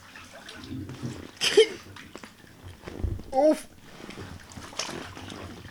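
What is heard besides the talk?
water splashing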